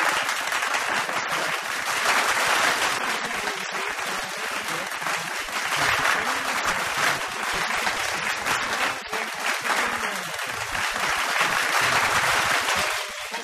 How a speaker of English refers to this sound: Myself, Tony Martin, I'm here. Give me some applause.